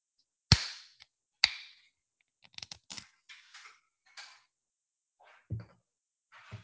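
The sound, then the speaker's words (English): A can of El Grito Lager, a 4.4% light beer, pops open with a sharp crack and a short fizzing hiss, then a second crack, followed by scattered small clicks and a few soft, low thuds. No one speaks. “Let's 360 degrees pop this baby open.”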